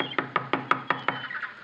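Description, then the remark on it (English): Six quick, evenly spaced knocks on the light, flimsy door of a shack made of paper, paste and wire on an island, moderately loud, with no voices. “A shack put together with paper, paste, and wire. I knocked politely.”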